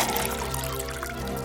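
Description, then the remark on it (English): Whiskey pours steadily from a bottle into a glass for a second or two, a continuous gurgling stream with a faint ringing tone, alone, without any talking. “Now pour that liquor.”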